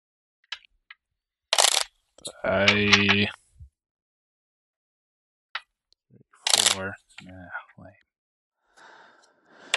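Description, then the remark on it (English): A deck of playing cards is shuffled at the end of a player's turn in a card game, in two short, crisp riffling bursts, separated by breathy vocal noises like a sigh and a gasp, with soft rustling in between. “And eventually I will draw two cards and we can call my turn done after I shuffle.”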